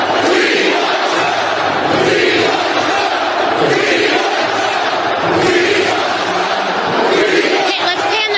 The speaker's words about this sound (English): They had at least 12,000 inside, sold out, packed house in that arena. And then they had a bunch outside, thousands more watching on the big jumbotrons. And this just drives them nuts. I mean, this even before the rally. You want to hear the crowd?